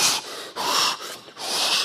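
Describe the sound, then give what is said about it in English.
A person imitates the loud, heavy breathing of a man lying down lifting weights: three forceful, rasping breaths in quick succession, exaggerated as if straining hard, with no talking. “And he lays down, and he does what every man does. He started breathing really loud.”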